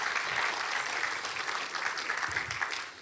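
An audience claps for the team steadily throughout, a dense wash of many hands with no break. It holds at an even, fairly strong level and has no voices on top.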